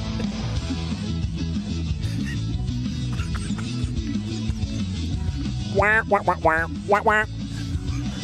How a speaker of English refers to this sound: It does have a lot of horns, though. It is. Lots I think of brass.